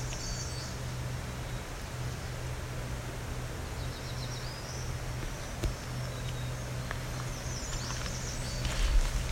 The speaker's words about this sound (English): That's an unusual call. So this is one of those conundrums. I would say that's a black-throated green warbler making up a new song.